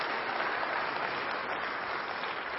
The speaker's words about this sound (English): Can we give some applause to the Lord this morning? Just give him a good round of applause.